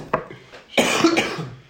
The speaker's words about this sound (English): Shout out the cough. Mm. The spicy cough.